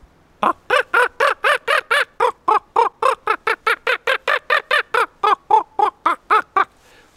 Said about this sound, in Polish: Kruki przy padlinie bardzo często kłócą się, przeganiają i wtedy wydają takie troszeczkę inne głosy, mniej więcej coś takiego.